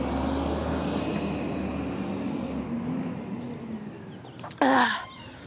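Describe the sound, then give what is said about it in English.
A garbage truck's engine rumbles steadily as it rolls past, ending with a short, loud burst of air-brake hiss. “Oh my god, a garbage truck is driving by.”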